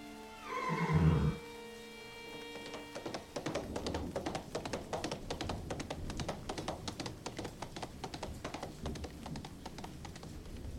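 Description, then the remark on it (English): A horse, Master Hindley's best horse taken by Heathcliff, gives a loud, shrill whinny, then a fast, steady clatter of galloping hooves takes over and continues without pause as the horse rides away. “Heathcliff's taken Master Hindley's best horse and he's gone!”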